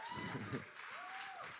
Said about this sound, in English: I can't just leave it at golf clap for the worship team.